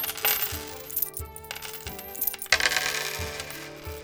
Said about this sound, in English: And I pull out the little pouch of 100 gold coins, and in similar fashion to the books, I just drop them on the ground.